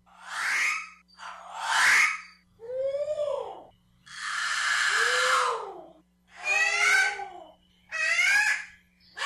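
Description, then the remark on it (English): An alala, the endangered, velvety black native Hawaiian crow, calls six times in a slow, steady series: loud, raspy caws, some drawn-out and grating, others warbling and wavering, with no voices. “As mentioned in a previous Manu Minute, alala is a velvety black native Hawaiian crow that's actually more closely related to ravens.”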